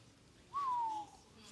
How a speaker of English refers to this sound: I ain't never whistled in the pulpit like that. That felt pretty good.